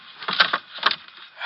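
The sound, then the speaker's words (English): A gun clatters into a wooden drawer with a few quick knocks, followed by a short scraping slide as the drawer is pushed shut, with no talking. “Drop the gun in the drawer.”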